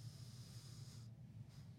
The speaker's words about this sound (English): I think the sound does sound off. I think I can hear one of you breathing.